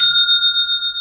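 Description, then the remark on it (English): A single bright bell of an old cash register dings once, loud, as its handle is pulled for a sale and the cash drawer opens, its clear metallic tone ringing on steadily for about a second with no voices. “When the handle is pulled, you get that bell sound and the cash drawer opens up.”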